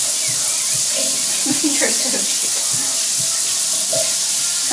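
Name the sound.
shower water running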